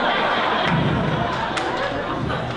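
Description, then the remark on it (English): An audience applauds steadily, a dense, even wash of clapping that stays at the same loudness throughout, with a faint murmur of crowd chatter mixed in and no one speaking clearly. “Yeah, that applause tells you everything.”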